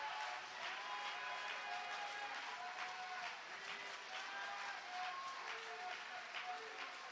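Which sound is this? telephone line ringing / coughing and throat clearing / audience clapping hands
audience clapping hands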